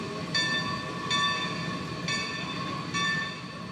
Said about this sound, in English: The all-wheel drive Shea locomotive was designed for the roughest mountain duty under the worst possible conditions. The antique locomotives that tourists ride at the Cass Scenic Railroad State Park are among the few remaining anywhere.